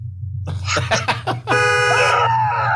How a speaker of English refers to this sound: That's just the horn.